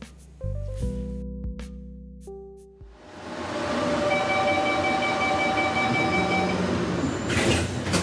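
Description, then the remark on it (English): Inside a moving city train in Barcelona: a low steady rumble of the carriage, tonal hums and whines from the motors, then a broad continuous roar as the train runs along the track, with no talking. “We're on board of one of Barcelona's trains to give our score on transportation accessibility.”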